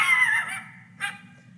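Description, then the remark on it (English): A dog barks twice, a longer, strained bark followed a moment later by a short, sharp one, over a low steady hum. “What is making that dog bark?”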